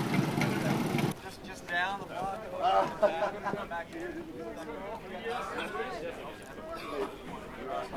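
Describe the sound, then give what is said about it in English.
A loud, gritty engine rumble from a Prius fitted with a Harley motorcycle engine, at a 24 Hours of Lemons race, plays for about a second and cuts off abruptly, followed by people talking, with only a faint low hum beneath their voices. “There's a Prius with a Harley motorcycle engine, which you might hear, and then there's a Yugo.”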